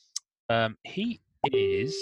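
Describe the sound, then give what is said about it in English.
The Messenger app's notification beeps: a sharp click, then a couple of short electronic chimes, then a steady held tone, clear against a quiet background. “Someone's beeping, and I know this gets picked up on the audio, so let me just quickly.”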